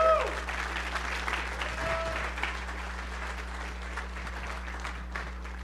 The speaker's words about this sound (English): Thank you, guys. Please give them an applause.